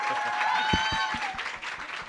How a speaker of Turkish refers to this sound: Bir alkış alalım.